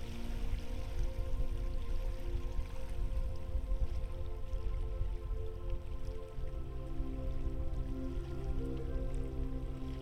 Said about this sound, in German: Die Boote laden zu geführten Touren ein und das Wasser schwappt sanft gegen das Ufer.